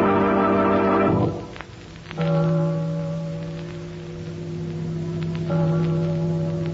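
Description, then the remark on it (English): A deep church bell tolls three slow times on a night with no meeting, each heavy strike ringing on in a long, humming drone that overlaps the next. No voices are heard. “Church bell's ringing. Something's up.”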